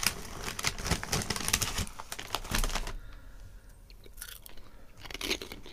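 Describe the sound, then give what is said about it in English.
Loud crunching of cheese-flavoured tortilla chips being chewed, with repeated sharp crisp bursts in the first half that ease into quieter, sporadic chews. No one speaks. “It's definitely got the crunch factor. I can hear that from over here.”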